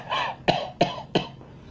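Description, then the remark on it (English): A woman sitting and smoking a cigarette gives a short burst of three dry coughs in quick succession, fairly loud, with a breathy rasp before the first and no talking. “I say dry cough, and my wife is sitting there smoking a cigarette, and she's”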